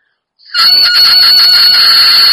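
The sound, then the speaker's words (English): A bagpipe chanter reed sounds a steady, buzzy, reedy drone, starting abruptly after a short silence and holding one bright pitch with a slight wavering rasp. “That one's a little bit buzzier already.”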